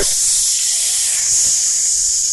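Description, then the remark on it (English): A loud, steady hiss lasting a couple of seconds, a voice imitating steam shooting out of a tray steamer box after its door is closed and its green button is pressed, bright and airy with no words spoken. “and you put all the trays in a little slide and you slide the whole little tray of trays inside the steamer box and you close it and you hit the little green button and steam comes shoot.”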